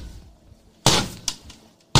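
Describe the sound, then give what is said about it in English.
Three sharp, heavy knocks land on a front door at uneven intervals, the first and last hardest, each a loud crack that quickly dies away, with no voices. “On the front door. I'll go answer it.”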